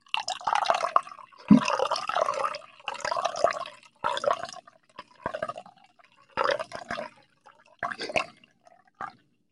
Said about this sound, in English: Just the way you poured that, it literally sounded like I was standing next to a dude in a urinal. I swear.